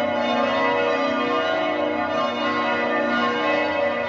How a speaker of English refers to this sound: And right as you connected, this came pouring out of the speakers in the studio. And you started talking. You started saying, oh, the church bells are going off. And I said, stop talking. Let the church right, bells right, go.